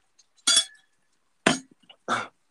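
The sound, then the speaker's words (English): A metal Yeti tumbler cup clinks against something outdoors three times at uneven intervals, each knock a bright, sharp hit with a short ringing tail. No one speaks. “That was my Yeti cup, my little tumbler cup hitting this”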